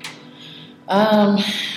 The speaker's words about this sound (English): It's now 8 o'clock. If you can hear those bells.